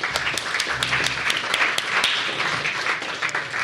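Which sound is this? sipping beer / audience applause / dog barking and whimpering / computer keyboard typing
audience applause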